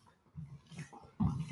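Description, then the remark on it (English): Rough, low growling and snarling bursts from fighting dogs, a few short surges building to a louder, harsher snarl near the end, with no talking. “I don't know what kind of dog fight. This has to happen right now.”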